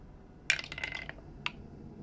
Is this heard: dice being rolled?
yes